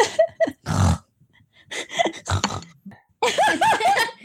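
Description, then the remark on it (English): A person does a voice for a little pig: a run of short snorty grunts and snuffles, then a burst of rising, squealing oinks at the end, fairly loud and with no other talk. “And he says, I'm trying to think of a good voice for a little pig. A pig voice.”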